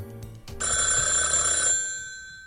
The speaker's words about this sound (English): What, the phone ringing? Oh, yeah.